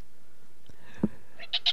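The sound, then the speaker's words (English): A pet cat lets out a few short, quiet meows, brief high-pitched chirps in quick succession near the end, with no talking and only a faint background hush. “My cat, apparently.”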